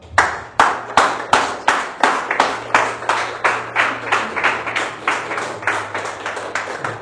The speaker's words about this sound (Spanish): Ese aplauso a Jesús.